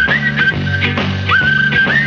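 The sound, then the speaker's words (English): A bright whistled melody with quick upward slides rides over a lively band backing with steady beats, loud and upfront, like an old pop instrumental record. “…. A la ….”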